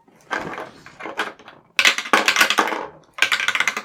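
Dice rattle and clatter in three bursts of rapid clicking, as if shaken and tumbled across a hard surface, with no voices over them.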